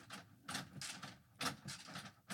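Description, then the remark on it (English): A door handle with a purse hanging from it is turned in and out repeatedly, producing a series of soft mechanical clicks and scraping rattles in a steady rhythm, with a faint jingle of loose parts and no talking. “I'm going to turn the door handle in and out.”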